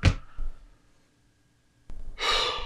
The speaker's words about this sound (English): stifling a yawn, everybody.